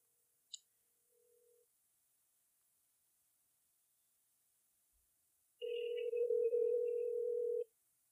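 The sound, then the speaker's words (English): An outgoing phone call to a sibling rings unanswered: a soft click and a brief faint beep, then one loud, steady ringback tone lasting about two seconds, with no voices. “Let's make a quick call to a sibling of mine and discuss this.”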